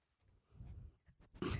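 A dog snuffles and snorts up close, a few low, breathy nasal bursts ending in a louder, rougher snort, with no talking.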